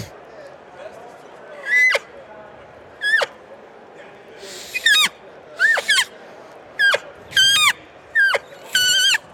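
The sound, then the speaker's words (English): Roughly eight short, high, squealing cow elk calls blown on a reed game call, each hitting a high note and then popping off the reed, a quick whiny note that drops off. They repeat at a steady pace over a faint hiss of background noise. “So a cow call is you hit the high note and then just pop off the reed.”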